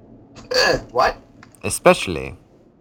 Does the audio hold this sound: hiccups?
yes